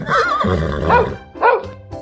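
A horse whinnies loudly, a long quavering neigh with shaking pitch followed by a second shorter burst, with no one speaking.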